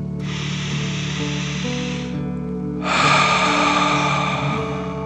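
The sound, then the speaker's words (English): A slow, deep breath drawn in through the nose for about two seconds, filling the belly, a short pause, then a longer, slightly louder exhale, clear over a soft, steady musical drone; one of three deep breaths in a relaxation exercise. “Remember to breathe in through your nose, filling up your belly, and then out, pretending you are breathing fire. Deep breath in and out.”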